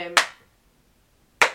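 Two slow, muffled claps, like gloved hands, land over a second apart, each a short soft thud that fades quickly. A brief trace of voice comes just before the first clap.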